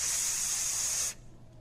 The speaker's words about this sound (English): I can almost hear a fuse that's been lit.